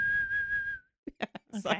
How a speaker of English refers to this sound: That's a whistle.